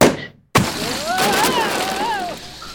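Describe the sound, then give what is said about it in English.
A sudden loud pop bursts out of brief silence as an inflated sumo suit pops, followed by a wavering, whistling squeal of rushing air that rises and falls in pitch as the wearer flies around the room like a balloon. “So the sumo suit popped and you flew around the room like a balloon.”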